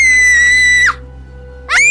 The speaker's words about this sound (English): The quick pull breaks a small bone in Beverly's arm. She yells in pain.